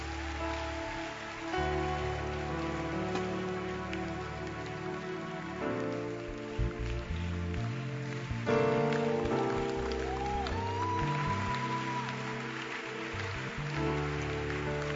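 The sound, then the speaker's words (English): At a church service, a steady, subdued patter of many hands clapping weakly carries on throughout, with sustained musical tones underneath that shift a few times. “hand clap is very, very weak.”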